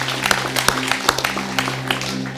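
A church audience claps during a worship service in an uneven, scattered patter of sharp hand claps, fairly loud, over a steady low hum, with no one speaking.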